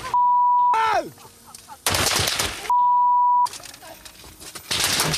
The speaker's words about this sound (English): I really don't enjoy listening to this. Yeah, so these bullets are ripping through their car.